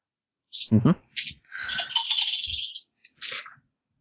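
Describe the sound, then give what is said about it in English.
A handful of dice clatter and rattle across a hard surface in a quick burst, followed by a longer tumbling roll and a couple of final clicks as they settle, fairly loud. “Reaction and intuition. So, 8 dice to start with.”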